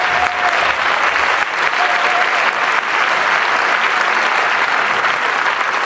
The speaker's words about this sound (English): Come on, clap your hands, give the Lord praise.